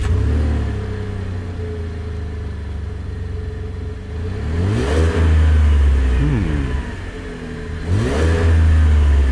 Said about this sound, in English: That sounds four-cylinder. Okay. Yeah, four-cylinder. That sounds like a four-cylinder.